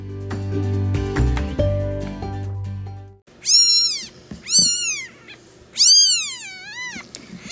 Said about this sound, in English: Tonight's episode, I have some co-hosts. They are three little kittens who, as of right now on a Sunday evening, are on their third day of life.